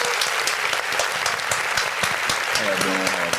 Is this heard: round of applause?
yes